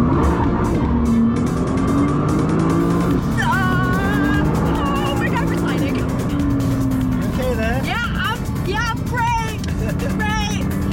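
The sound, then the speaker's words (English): A race car engine drones and revs steadily on a racetrack, its pitch rising and falling as it speeds along, with indistinct voices talking over the continuous roar throughout. “At church, praying to God that I don't die on a racetrack.”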